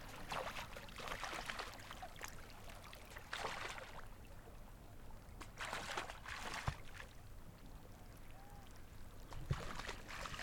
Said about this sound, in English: So that's little penguins leaping through the water. You can hear the crunching ice. Water lapping up on the beach.